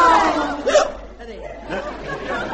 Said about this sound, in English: you've got the hiccups.